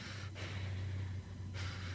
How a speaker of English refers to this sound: If you hear me breathing, that's what I'm doing before I can say anything to Jesus. It's like, okay, Lord, okay.